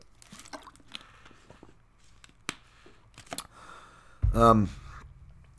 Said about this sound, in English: Water, please, water. I'm going to have some water, actually.